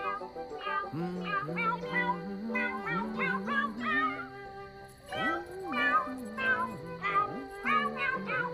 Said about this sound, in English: Row, row, row your boat. Yeah, okay. So they're meowing, row, row, row your boat. And I'll see if I can put it in here.